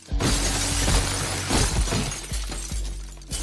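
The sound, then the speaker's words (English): Loud glass shattering right after a heavy crash as a man throws himself into a shelf, with a cascade of breaking shards and bright crackling debris continuing across several seconds, plus a few dull thuds underneath. “where it freeze frames as he's throwing himself into the shelf.”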